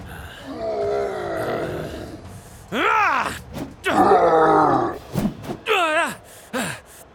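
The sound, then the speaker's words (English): A creature called an elk owl groans and grunts in agreement in a series of drawn-out, pitch-bending vocal calls, some rising and falling, loud, with short pauses between bursts and no talking. “Truce? Elk owl. Diplomatic creature. It agrees.”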